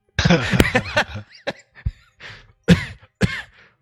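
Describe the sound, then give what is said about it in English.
A person coughs repeatedly: a rough cluster of hacking coughs, then several sharper single coughs spaced irregularly, with brief quiet gaps between. No talking. “Just cough for a second.”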